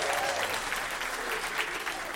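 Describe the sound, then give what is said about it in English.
A crowd claps steadily in dense, continuous applause for IKEA and the staff at IKEA, loud and sustained throughout with no voices standing out. “So first and foremost, can we please give a big round of applause for IKEA and the staff at IKEA?”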